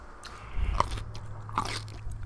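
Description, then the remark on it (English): A crisp bite into a pickle, followed by a second crunchy chomp about a second later, with no talking over the sounds. “About to eat this motherfucking pickle.”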